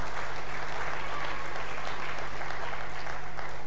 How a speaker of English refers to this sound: So you can give them a round of applause, I tell you.